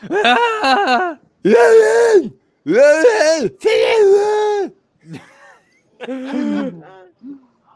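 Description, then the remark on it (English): A voice imitates a man's heavy breathing and wet tongue-chewing noises from a video: a series of loud, drawn-out groaning, gasping bursts, followed by a few shorter, quieter huffs. “It sounds like he's chewing on his tongue the entire fucking time. Yeah. The breathing.”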